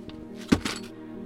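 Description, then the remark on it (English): A sack of silver coins is set down with a soft, dull thunk and a quick second bump, the coins giving a brief muffled rustle against a steady low background hum. “Yes, here's my sack of silver coins.”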